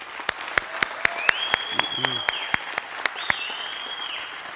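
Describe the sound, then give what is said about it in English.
An audience applauds with crisp claps in a steady, quick rhythm as men applaud mothers and wives for Mother's Day, while two long high whistles ring out over the clapping and faint voices murmur underneath. “Whatever it is, men, let's give them a round of applause or whatever it is. Do it right now.”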